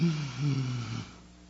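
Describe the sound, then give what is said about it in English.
A single loud, drawn-out, deliberately inhaled breath with a rough, snore-like rasp, lasting about a second before cutting off into near silence. “I treat breathing, this is the birth of a breath.”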